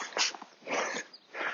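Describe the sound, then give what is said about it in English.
A dog licks a person's face: three bursts of wet, smacking lapping sounds with short pauses between them, fairly quiet, and no one speaking. “Just trying to pick another stone out here while my dog licks my face.”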